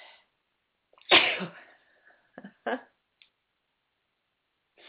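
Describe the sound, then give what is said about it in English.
A woman gives a single loud sneeze, followed by a couple of short sniffs or mouth clicks, with only brief traces of a voice at the very start and end. “she sometimes sneezes. It tickles her a bit when we come through.”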